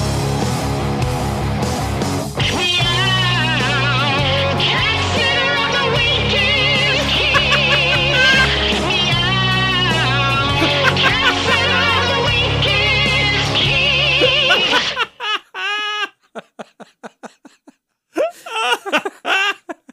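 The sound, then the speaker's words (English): A loud pop song from the 1990s, with a sung vocal over a full band, plays for about fifteen seconds, then breaks off into a few short, choppy bursts of sound with gaps between them. “This was a song released in the 90s, so...”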